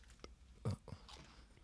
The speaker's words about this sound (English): Okay, I'm munching down.